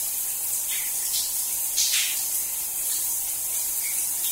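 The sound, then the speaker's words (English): A shower sprays steadily with a broad, constant hiss of falling water, fairly loud, with a few brief splashy surges as the stream shifts, while someone waits for the water to get cold. No one speaks. “Waiting for the water to get cold.”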